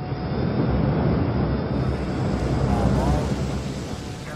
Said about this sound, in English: The U.S. drone, carrying a hypersonic Stinger missile, closes in on its target. 15 seconds to target.